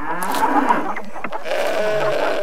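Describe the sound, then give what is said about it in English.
Several goats bleat together in a loud, overlapping chorus, their wavering cries filling the short stretch without pause and no talking underneath. “The metaphysical goat is here.”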